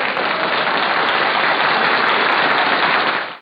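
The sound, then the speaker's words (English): Dense crowd applause, a steady wash of many hands clapping at an even, loud level for about three and a half seconds before cutting off abruptly. No one talks over it. “Applause inserted.”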